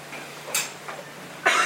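A woman coughs a few times in quick succession, short breathy bursts with the final one loudest and harshest, with no talking.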